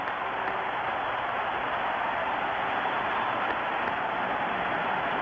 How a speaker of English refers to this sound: The crowd is up. As you would expect, a standing ovation. His teammates are there to greet him. A three-run blast by Henry Aaron has tied the great Babe Ruth.